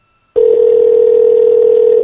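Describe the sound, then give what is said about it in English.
A steady electronic ringing tone of an outgoing phone call begins abruptly and holds at one even pitch, loud, with no voices over it. “See if Niall picks the phone up.”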